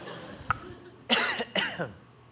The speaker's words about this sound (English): Excuse me, I'm going to grab a drink of water real quick. I have one of those crazy, I'm about to cough, but it just will not manifest itself right now.